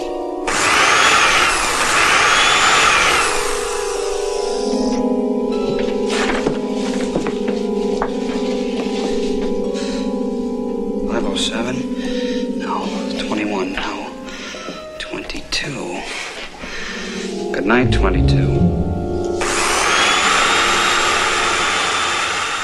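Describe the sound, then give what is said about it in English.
A power drill whines loudly in two bursts, one at the start and one near the end, with clanks and scraping mechanical noises in between, as a man drills into his own skull. “He basically pulls out a drill, puts the drill bit in, and then he figures out which one or what part of his brain he needs to attack.”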